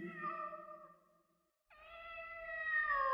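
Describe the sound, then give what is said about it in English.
A cat meows twice, loud: a drawn-out cry that fades off, then after a brief pause a second, sharper meow that holds strong to the end, with no one talking. “The cat was beside them, biting the shoelaces.”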